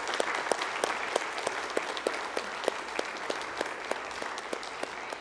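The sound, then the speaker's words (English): An audience applauds all the mothers on Mother's Day with steady, dense clapping that holds at a fairly even level throughout, a few sharper claps standing out in a loose rhythm, with no voices heard. “Can we give all of our mothers today a hand clap, please?”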